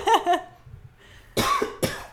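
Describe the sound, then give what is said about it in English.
A short run of loud coughs in quick bursts: two lighter ones, a brief pause, then two harsher, forceful coughs, with no talking. “Sorry, I'm, like, coughing like crazy.”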